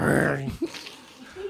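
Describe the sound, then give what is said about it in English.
A person voices a short, low, loud growl imitating a bear, then it trails off into quiet breathy noise. “Give us a little growl.”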